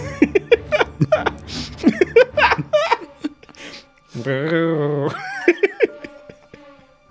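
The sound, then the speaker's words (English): Someone talks briskly, then lets out a single drawn-out, wavering meow, fairly loud, imitating a cat's meow as the voice of a hoofed creature called Cowfoot, lasting about a second before brief chatter resumes. “Cowfoot's like, meow.”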